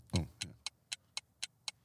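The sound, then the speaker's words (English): A quiz countdown clock, giving 10 seconds to answer, ticks in a quick, steady rhythm, about four ticks per second, each a crisp, bright click. The first couple of beats land with a heavier, fuller thump. “you've got 10 seconds, Joe. The shot clock wasn't around when you debuted”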